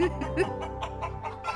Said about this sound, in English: But I don't feel like the chicken clucking is a relaxing sound. What's not relaxing about this? The clucking.